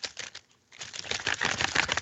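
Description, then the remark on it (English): A plastic water bottle crinkles and crackles in dense, irregular bursts, with a brief pause before a louder, sustained stretch of crunching, no voices present. “Sounds like a bag of potato chips. It's my water bottle, or I should say, it's my bottle of LAFC fan tears.”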